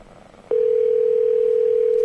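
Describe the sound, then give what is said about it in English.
A steady telephone dial tone switches on abruptly after a brief quiet moment as someone tries to place a call over Skype, and it holds loud and unbroken to the end, with faint room noise beneath it. “we are going to see if we can get Raj on the phone”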